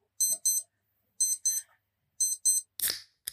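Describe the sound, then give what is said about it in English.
An electronic alarm beeps in pairs, three quick double-beeps about a second apart, clear, followed by a brief rough burst of noise at the end. “Beep, beep, beep, beep.”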